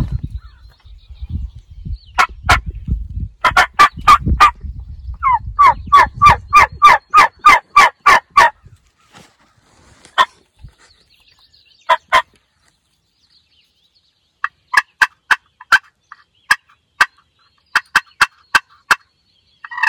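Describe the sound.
Hunter's turkey calls on a glass friction call and a mouth diaphragm imitate yelps and gobbles in rapid series of sharp, raspy notes, separated by short pauses, over a low rumble at first.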